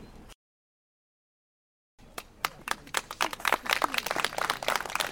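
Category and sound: crowd, applause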